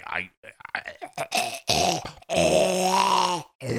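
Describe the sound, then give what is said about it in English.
A sick person strains through a series of rough, throaty coughs and drawn-out groans, the sounds loud and choppy at first, then stretching into a long, harsh, voiced moan before a final short grunt. “Cough it up.”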